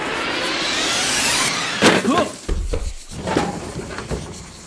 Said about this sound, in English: The doors closed behind them and the bus took off, leaving the scribbles behind.